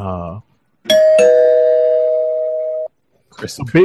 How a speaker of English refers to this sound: spoiler alert, gotta ring the rechristened spoiler bell.